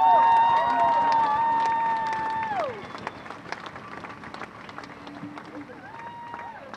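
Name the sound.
crowd applause and cheering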